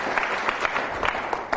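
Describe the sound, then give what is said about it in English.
Audience applause for a speaker being introduced from the Jahnel Group, a business: many hands clapping in a dense, steady crackle of overlapping claps, holding at an even moderate level throughout with no voices over it. “So please, give it up.”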